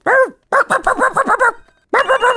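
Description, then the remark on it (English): A person imitates a dog, letting out a loud burst of rapid, yappy barks in quick succession, a brief pause, then another flurry of barking yips. “Okay, yes, you're a dog now. Okay, there's a dog here.”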